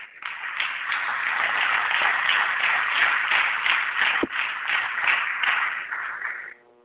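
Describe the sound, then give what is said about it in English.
An audience gives another round of applause to thank a board member, breaking into steady, dense clapping with many hands at once in a continuous crackling wash that holds an even loudness for about six seconds before cutting off. “And I would like you to thank him with another round of applause.”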